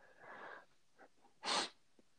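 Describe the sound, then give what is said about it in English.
A quick, sharp nasal sniff sounds fairly loud, preceded by softer breathy inhales and a couple of faint nose noises. Nobody speaks. “How do you think if you were to spell out a sniff, how do you think you would do it?”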